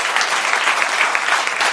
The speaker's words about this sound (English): A round of applause